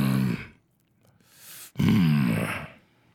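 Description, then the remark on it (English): A man's voice imitates the growl of a large Kenku: a low, rough vocal rumble, a short breathy pause, then a longer, louder guttural growl with a wavering pitch. “And he looks down on you guys and he kind of growls.”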